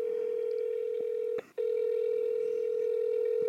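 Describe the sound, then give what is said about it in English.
A steady, clear ringing tone of an outgoing phone call to the caller's brother hums through the earpiece, interrupted by one brief break before continuing; no one speaks. “I'm telling you, this day and age, no one picks up their phone from an unknown phone number. I'm going to try my brother again.”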